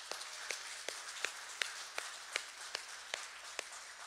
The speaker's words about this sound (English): happy Mother's Day to the moms who are in the room. And so we want to give a special round of applause for you for being a mom all day, every day.